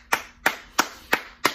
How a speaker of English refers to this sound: Let's give God some praise. Hallelujah, hallelujah. I'll clap it up too.